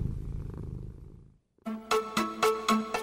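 A cat purrs, a low continuous rumble for about a second and a half, then stops. After a brief silence, a run of bright, rhythmic musical chords follows.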